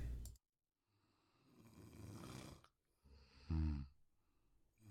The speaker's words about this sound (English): Snoring.